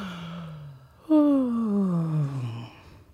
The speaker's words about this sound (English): let yourself yawn. That actually brings more relaxation. Take a deep breath in and just yawn.